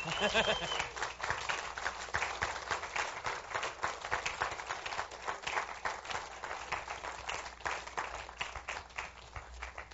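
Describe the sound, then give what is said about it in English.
A church audience claps and cheers steadily for the full ten seconds during a morning service, for a team standing at the front, a dense, continuous wash of applause with a few whoops rising out near the start before settling into even clapping. “Go ahead and cheer and clap and stuff.”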